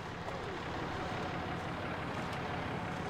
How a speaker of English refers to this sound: It's early April, and it's the first event of the year for the amateur fishing derby. The sound of diesel engines fills the cold morning air.